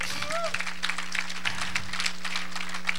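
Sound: audience hand clapping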